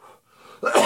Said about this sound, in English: Oh, strawberry cough. Make me cough. Pardon me. Sorry, don't mean to cough in your face. All right, pause. All right, coughing fit neutralized by Sandy Sweet Watermelon Soda.